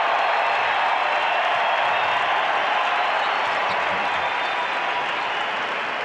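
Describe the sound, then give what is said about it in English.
Sustained, dense applause from a large basketball arena crowd giving a standing ovation to a player as he is substituted out of the game, a steady roar of clapping and cheering that stays loud and even for several seconds without letting up. “Crowd gives him a standing ovation.”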